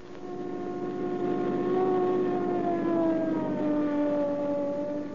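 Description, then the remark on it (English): A police car siren wails steadily for several seconds as police arrive at a bank hold-up at 7th and Hoover. Its pitch slowly rises and then sags, loud and unbroken over a low engine rumble, with no voices. “Here's the cops already. That's fast.”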